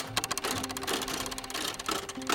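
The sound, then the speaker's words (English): Rapid, steady mechanical clicking and tapping like turning gears, repeating many times per second over a faint low hum, with no voices. “Then you hear the sounds of gears clicking and some kind of tapping.”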